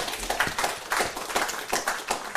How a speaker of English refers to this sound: I think that does deserve a round of applause, actually. Yes.